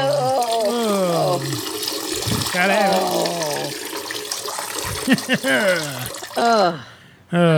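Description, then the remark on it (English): A toilet flushes, its rushing, gurgling water running steadily beneath a loud, animated voice for several seconds before cutting off abruptly near the end. “Flush it down. Flush it down.”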